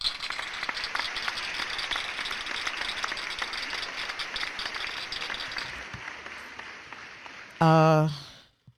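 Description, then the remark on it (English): An audience applauds a hip hop legend steadily, a dense crackle of many clapping hands that holds for about seven seconds and thins slightly before a brief, loud buzzing tone cuts in at the end. “Let me give a round of applause to …, please.”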